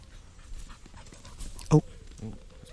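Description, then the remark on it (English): A dog pants and whimpers, with one sharp, louder vocal burst partway through before softer whining sounds trail off. “Lost dog.”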